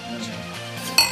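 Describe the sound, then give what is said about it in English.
A single bright, sharp clink of drink containers tapped together in a toast before tasting an 8% malt liquor, near the end, following a stretch of low background murmur. “Go ahead and give it a taste. Cheers.”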